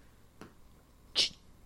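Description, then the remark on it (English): A single short, sharp meow from a cat overexcited about cords rings out after a faint earlier sound, loud and brief against a quiet background with no talking. “No, we don't chew cords. That's not the kind of cat we are.”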